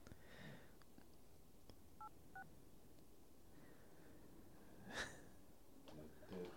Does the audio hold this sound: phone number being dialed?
yes